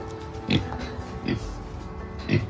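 A Poland China pig on a farm oinks three times in short, gruffy grunts spaced about a second apart, over a steady low background hum.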